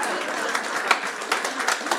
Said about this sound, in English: Oh, that's where you clap right there.